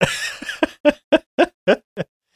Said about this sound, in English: But we're also not going to mute any of the coughs today.